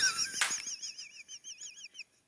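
Lips are moved around a microphone in circles while fidgeting: a sudden bumping scrape, then a run of rhythmic, high, warbling squeaks that rise and fall in quick repeated strokes, fading out after about two seconds.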